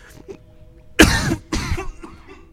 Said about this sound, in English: Excuse for cough. I have water. I can clear this up.